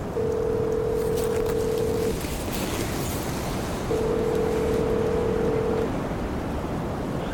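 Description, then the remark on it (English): A satellite phone dials out: two long, steady electronic ringing tones separated by a pause of about two seconds, heard over constant wind and boat engine rumble, with no voices. “I'll get the sat phone. Michael's still waiting for an update on our return.”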